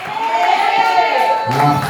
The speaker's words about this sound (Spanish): Denle un aplauso a Cristo por esa visita.